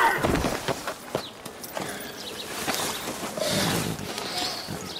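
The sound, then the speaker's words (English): Several sharp smacks of face slaps in a film scene land in quick succession, mixed with scuffling and short vocal sounds, fairly loud and irregular in rhythm. “I slapped you! I didn't whack you in the head with a shovel!”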